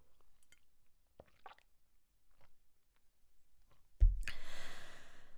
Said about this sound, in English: Just going to have a sip of water.